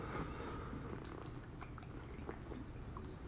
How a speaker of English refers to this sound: Let's sip more of my coffee here.